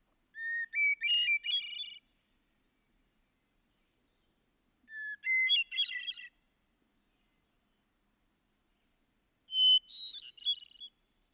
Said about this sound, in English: That of the hermit thrush, spiritual serenity.